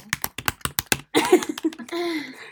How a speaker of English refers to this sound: She's typing.